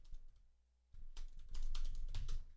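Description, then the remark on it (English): Rapid clicking of keys on a computer keyboard, moderately loud, with a brief pause before a denser burst of typing. “That was the actual keyboard.”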